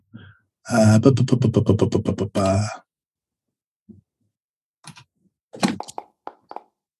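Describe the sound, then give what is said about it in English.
A couple of seconds of loud, rapid rattling, like dice shaken in a cup, then a pause and a scatter of quick clacks as the dice tumble and settle. No voices. “And actually, I'm going to roll a dice for this.”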